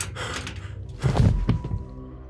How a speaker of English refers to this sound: Though they fell to the floor in the process, their collaboration succeeded and the door flung open.